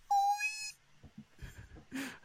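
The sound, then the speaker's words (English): A person makes one short, loud, high-pitched squeak, imitating a bat, followed by quieter muffled rustling and soft vocal noises. “…, are you trying to tell us something? And he sits there like a parrot on your shoulder. A bat sitting like a parrot.”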